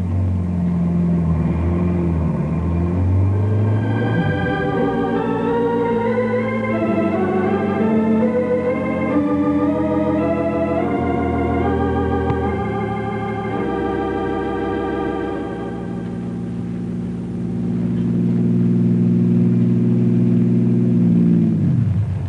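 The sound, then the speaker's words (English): A car engine revs and accelerates, its pitch climbing through gear changes, then settles into a steady hum as the car is driven half a mile down the road, turned around and driven back toward a barricade. No voices. “Harry drives the car a half mile down the road, turns around, and starts back toward the barricade.”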